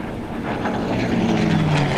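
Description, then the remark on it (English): A propeller aircraft engine roars steadily, a dense droning buzz with a rising tonal hum as the plane takes off at the start of an air race, loud and continuous with no talking. “Drat, who's that up first? Into the air in the lead flies Air Burter.”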